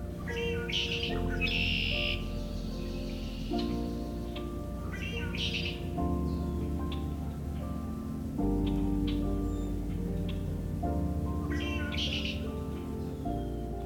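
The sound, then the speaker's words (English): A wide variety of songbird species chirp and trill in short bursts every few seconds, fairly clear, over a steady humming tonal drone, at Coots Paradise marsh in Hamilton, Ontario, in mid-March with warmer weather returning. “Before I reach the blackbirds, however, a wide variety of songbird species are celebrating the return of warmer weather.”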